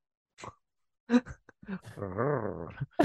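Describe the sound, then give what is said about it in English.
A person imitates the growl of the Predator, the alien creature from the films, with a few short guttural bursts and clicks, then a sustained, warbling rumble, moderately loud, with no words spoken. “Something so flirty about the Predator growl.”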